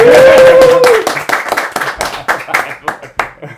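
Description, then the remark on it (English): A round of applause from a small audience: scattered, uneven claps that start loud and thin out, opening with a short held tone over the first claps. “Round of applause, please. We're here with a live audience as well.”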